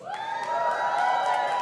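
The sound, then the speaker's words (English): An audience yells out together when Dunkin' Donuts people are asked to yell out: a sustained burst of mixed shouting voices that rises quickly and holds steady at a loud level for under two seconds, with a few higher whoops on top. “So if you're a Dunkin' Donuts person, just kind of yell out to me.”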